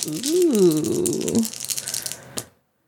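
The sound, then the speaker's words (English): A brief gliding vocal sound gives way to a rattling clatter of three dice tumbling across a surface during a game, ending in one sharp final click as they settle. “Yep, you're rolling 3 dice.”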